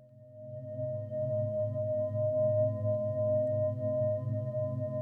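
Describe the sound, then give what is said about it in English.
A humming ball gives off a steady, sustained tone: a low droning hum with a clear higher ringing note above it, holding evenly for about five seconds with no talking. “Here's your humming ball. Relax.”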